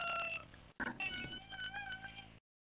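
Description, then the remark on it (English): A kazoo quartet plays, the kazoos buzzing together in nasal, wavering tones, slightly overlapping in short phrases with a brief gap, then a sudden loud burst at the very end. No one speaks. “Yes, and I have the kazoo quartet behind me.”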